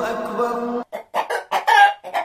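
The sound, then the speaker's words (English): Chickens cluck: one drawn-out squawk opens, then a quick run of short, choppy clucks in uneven bursts, loud and alone with no talking. “Chickens.”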